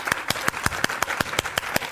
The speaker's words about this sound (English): My wife, I'm gonna wait while you clap your hands. I'm excited about that.